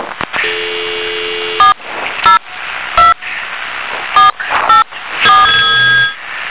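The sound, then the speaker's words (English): A telephone ringing over a thin, tinny phone line as LUNk Radio tries to reach a caller on air, with steady tones broken up by a series of short electronic beeps, fairly loud, with no talking. “Wait to pick up until it starts ringing.”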